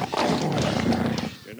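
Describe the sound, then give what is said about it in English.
A dog, Bobo, growls low and rough for over a second, loud, with a throaty rumble that trails off into quiet at the end. “Come on, you stupid dog.”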